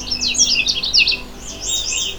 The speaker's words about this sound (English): It's sometimes called the necklaced warbler due to its black necklace pattern across its yellow chest. The Canada Warbler song is loud, clear, and can vary by individual, but generally always has a cheery tone sung from a low perch.